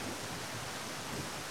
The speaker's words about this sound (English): There's a sudden rumble in the sky overhead, and it's almost as though someone has pulled a curtain across the sky. And within seconds, heavy rain begins to pound down through the trees.